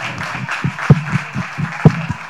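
Steady, rhythmic clapping from an audience keeps a quick even beat, with a few sharper, louder claps standing out. No one speaks over it.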